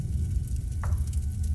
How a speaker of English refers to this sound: I fire. Fire at the back of the chair. Your shot sizzles. Serious? Yeah. All right. Your shot sizzles through the armchair.